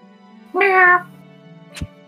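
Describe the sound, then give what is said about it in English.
A person imitates a cat with a single loud, drawn-out meow lasting about half a second, followed by a brief sharp tap over a low steady hum. “Yeah, no, but he just meows.”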